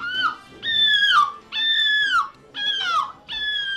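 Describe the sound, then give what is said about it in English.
Contestants in a seagull impression contest take turns imitating a seagull's shriek: four or five loud, shrill, nasal cries in quick succession, each holding a high pitch before sliding down at the end, with no talking. “And then the contestants take turns shrieking.”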